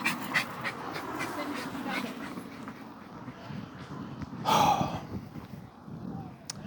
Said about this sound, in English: But why do women have dogs if they can't hold the dog back? Why? Why have a dog and can't hold the dog back? Anybody who's not watching and just listening, right now some dog just like almost came at me